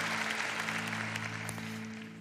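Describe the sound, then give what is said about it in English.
An audience claps steadily in a dense patter of overlapping hand claps, moderately loud and continuous, with a low steady hum beneath and no voices. It applauds together for living for the glory of God. “Now, that was a fairly weak applause, so I think we ought to do that together, okay?”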